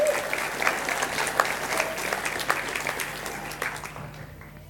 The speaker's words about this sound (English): So would you give them a round of applause as they make their way up?